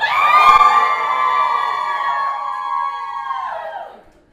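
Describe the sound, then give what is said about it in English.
A live audience at a lecture screams and cheers together on cue for a quick video, hands up, in one loud, sustained burst of high-pitched voices lasting about four seconds before quickly fading out. “just scream, put your hands up. 3, 2, 1, go.”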